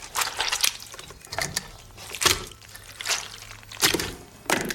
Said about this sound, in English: Ringing out a flannel filled with custard while walking on stilts! Correct.